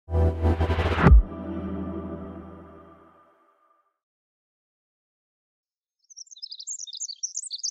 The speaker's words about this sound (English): The call of the Pacific Wren, a small brown bird with an incredible voice. And while we can appreciate its song, there's a lot it's communicating that we just can't pick up.